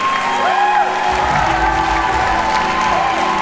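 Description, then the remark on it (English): An audience claps and cheers for Jesus loudly and steadily throughout, with dense applause, scattered whoops and sustained high-pitched tones ringing over the crowd noise. “If you're clapping for Jesus, do it right.”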